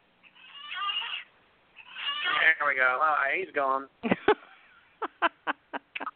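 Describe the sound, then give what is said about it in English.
A male cat lets out a couple of drawn-out, complaining meows as it is moved out of the way, its pitch wavering, followed by a person speaking briefly. “He did not sound happy about being moved at all.”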